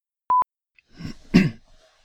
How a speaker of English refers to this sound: Oh, you just were clearing your throat for the fun of it? It sounded like you were going to say something really, really, really important.